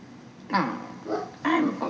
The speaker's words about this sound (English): Y'all know what's crazy? My dog does all this whining and bitching while he's in the house, and then when you put him out in the yard, he does the same thing.